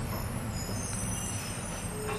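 Garbage trucks coming in to collect garbage rumble steadily in the background, a dense low mechanical drone with faint high whines over it, continuous, with no voices.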